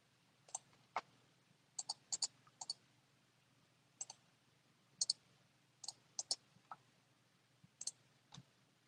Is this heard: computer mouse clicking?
yes